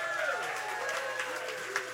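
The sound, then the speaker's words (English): An audience applauds with a steady wash of clapping and crowd noise, a few brief whistles or cheers rising over it, fairly loud throughout the short burst. “Give it up for C. Russell Price.”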